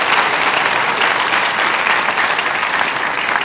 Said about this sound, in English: Give him a clap for you. Give him praise.